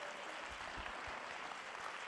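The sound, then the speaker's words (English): A church audience claps hands to the Lord in a dense, steady patter of many overlapping claps, filling the whole stretch at an even, moderately loud level with no pauses. “You may be seated, just clap your hands unto the Lord.”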